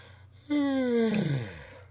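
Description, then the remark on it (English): A single loud, drawn-out yawn, starting abruptly and sliding downward in pitch for over a second before trailing off into a breathy exhale, with a low hum underneath. “I could have yawned a bit quieter at that point.”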